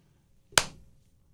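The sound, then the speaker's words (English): A single sharp hand clap, crisp and bright with a quick decay, standing alone against near silence, the start of a slow clap. “Slow clap. I've always wanted a slow clap.”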